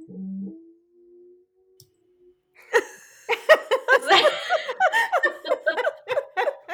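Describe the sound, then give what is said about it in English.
A sleeping, dreaming dog lets out a soft, drawn-out howl that holds one thin, steady pitch for a couple of seconds, then a person breaks into bursts of laughter. “He's asleep and he was howling.”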